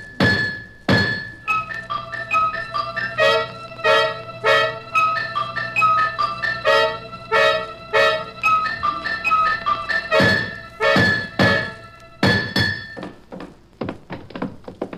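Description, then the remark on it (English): A hammer striking a chisel repeatedly, chipping cement off a heavy object so it can be lifted, in loud, irregular blows, each strike ringing metallically before the next. No voices. “I keep chipping off the cement, but I still can't lift it.”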